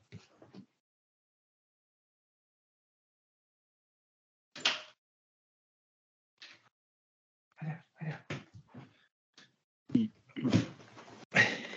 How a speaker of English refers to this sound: Hold on, I got to close the door. One second.